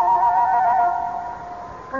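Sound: horse neighing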